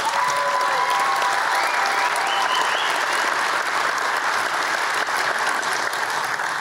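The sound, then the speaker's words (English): A live audience claps steadily and loudly, a dense, even wash of applause sustained throughout with no pauses. “And those of you who are going to church tomorrow and didn't applaud, pray for me.”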